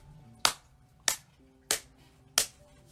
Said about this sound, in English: And we take one big deep breath, hold it for 5 seconds. And release. And we clap our hands.